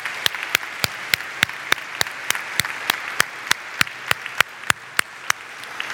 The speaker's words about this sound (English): we welcome you today, and especially on this happy Father's Day, to all the fathers and grandfathers and men in our lives, mentors who've been spiritual mentors. I think we ought to give them a special round of applause this morning as we worship.